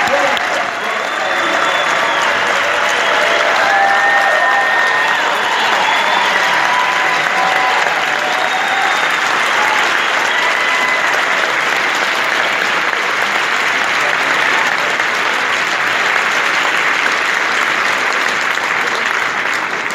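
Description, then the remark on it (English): A large audience at a Drug Policy Alliance conference claps steadily for about twenty seconds, a loud, dense wash of hand claps with scattered whistles rising briefly over the sustained applause. “So will you please give a big round of support of applause.”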